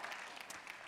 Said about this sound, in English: Yeah, we can applaud for her.